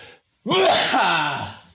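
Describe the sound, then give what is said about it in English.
A single loud sneeze bursts out after a brief silence, with a voiced, drawn-out tail that fades over about a second. No talking. “I have to sneeze again.”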